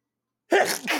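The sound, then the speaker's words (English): A single loud sneeze erupts abruptly after a moment of silence, a sharp burst with a breathy, hissing tail; no talking accompanies it. “hold on, I'm gonna sneeze.”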